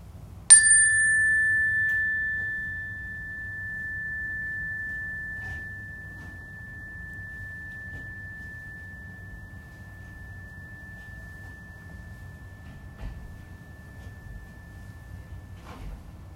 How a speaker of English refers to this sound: So we all now have our hands up. Does that mean that we don't hear the chime anymore? Yeah. Yeah, it means we don't hear it anymore.